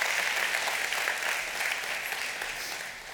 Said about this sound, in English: One more time, can you give him a round of applause?